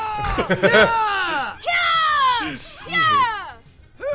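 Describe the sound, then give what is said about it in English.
A series of loud, forceful karate yells played from a soundboard clip: a few short sharp shouts, then two longer, drawn-out cries with falling pitch, prominent with no other sounds around them. “There's a clip on the soundboard just called Karate Yells.”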